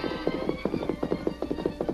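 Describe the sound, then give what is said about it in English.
A white horse carrying a rider gallops, its hoofbeats pounding the turf in a fast, steady rhythm of quick repeated thuds, with no voices. “He heard the hoofbeats pounding the turf with rhythmic power.”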